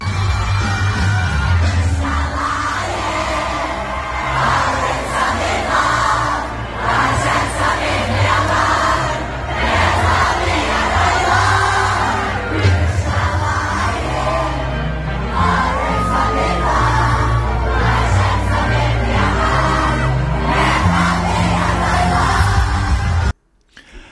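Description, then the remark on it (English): A huge concert crowd sings and shouts along at full voice to the band's hit song over loud, pounding music, singing lyrics in a language they don't understand, with a Christmas tree in the background. A dense continuous roar of many voices stays intense throughout before cutting off abruptly. “Like people screaming these lyrics that they don't understand on top of their lungs.”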